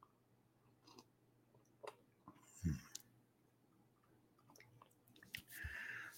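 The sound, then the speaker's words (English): Someone sips coffee: soft mouth clicks and a light clunk of the cup, then a brief airy slurp at the end. Quiet, with no talking. “But first, let's take a sip of our coffee.”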